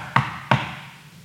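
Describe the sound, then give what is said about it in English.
Two loud, hollow knocks on a door about a third of a second apart, each a sharp thud with a short resonant ring that fades out, with no other sound around them. “This peaceful moment, this comfortable moment, is suddenly interrupted by several footsteps just outside the door, followed by a loud knock.”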